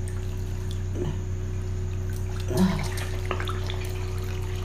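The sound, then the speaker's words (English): Bathwater sloshes and splashes in a short swell near the middle as a person dunks their whole head under the water, with gentler lapping before and after over a steady low hum. No one speaks. “Yeah, there you go. The whole head underneath the water.”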